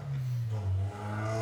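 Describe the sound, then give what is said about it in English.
A car engine revs loudly outside, a low throbbing roar that climbs in pitch with rising harmonic whine, steady and sustained with no voices over it. “Oh, dude, I don't like cars. Yeah, that was loud.”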